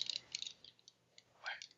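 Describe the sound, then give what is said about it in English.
A quick clatter of six dice rolling and tumbling across a hard surface during a tabletop role-playing game, a burst of small bright clicks followed by a few scattered taps as they settle, fairly quiet; the dice land on four sixes, a two and a three. “So roll that plus your intuition dice.”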